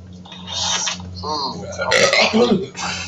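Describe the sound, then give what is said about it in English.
A drawn-out burp with a gurgling, voiced quality, followed by a second rougher belch and some breathy noise, loud against a steady low hum. “And I'm burping, and I'm farting all over the place.”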